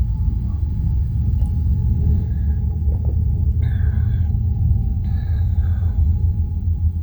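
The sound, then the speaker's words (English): A passing train's heavy, steady low rumble fills the whole stretch, with a thin constant hum above it and two brief higher whining squeals partway through. No one speaks. “Hopefully it's not a long train.”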